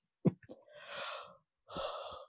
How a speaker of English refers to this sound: She yawns at it. It's early when I've already had things happen. It's been a morning already. It's one of those days where you're like, hello, I am taking all comers and let's just have everything just at me at once. Apologies for the yawn, folks.